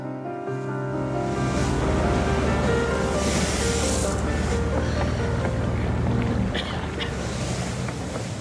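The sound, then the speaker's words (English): A public ferry's engine drones steadily while water churns and splashes along the hull, with a constant wash of wind and spray throughout. “It's a public ferry, not a police boat.”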